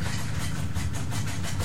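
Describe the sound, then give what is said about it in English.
Steady, rhythmic scratching from a pet iguana named Tina scratching at something, a run of repeated raspy strokes over a low, constant rumble, with no voices. “Tina's scratching at something.”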